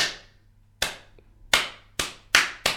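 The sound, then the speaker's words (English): Six sharp hand claps in a slow-building, impressed clap, starting slow and widely spaced, then gradually quickening into a faster rhythm, with no voices over them. “Whereas I'd say the sort of slow build, I'm clapping, I'm impressed.”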